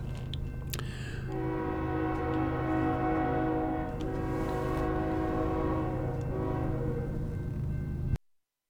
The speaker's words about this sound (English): Train's going to come by here. Hold on just a second. When it gets real loud, you'll hear me mute it. It'll be muted for just a few seconds, and I'll come right back.